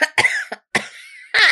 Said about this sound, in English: Corona cough.